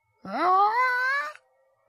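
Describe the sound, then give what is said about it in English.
A reversed-reverb screaming choir used as a film's musical sting: a single wailing swell that slides upward, holds a strained high tone for about a second, then cuts off abruptly. No talking. “And you hear like a reversed reverb fucking screaming choir.”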